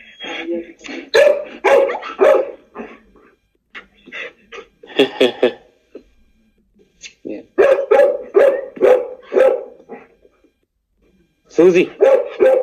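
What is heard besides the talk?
german Shepherd dog barking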